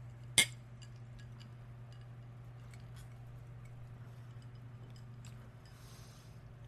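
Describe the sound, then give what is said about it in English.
A single bright clink of drinking glasses of gin tapped together in a toast, crisp, followed by a few faint light ticks over a steady low background hum. “Let's clink it.”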